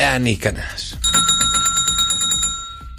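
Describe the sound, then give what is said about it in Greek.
A voice speaks briefly, then someone rings a house's loud, rapid electric doorbell continuously for about two seconds, a shrill, buzzing trill with faint talk underneath. “Και πάει σπίτι, χτυπάει το κουδούνι.”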